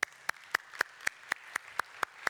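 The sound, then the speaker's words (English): An audience claps for the fathers among them, steady and evenly spaced, about four claps per second, sharp over a faint background wash, with no voices. “Give yourselves a clap.”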